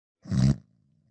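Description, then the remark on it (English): A single harsh, guttural throat-clearing hawk, like someone hocking a loogie. It's a loud rasp of about half a second that trails off into a faint low rumble, with no talking. “You just hock a loogie?”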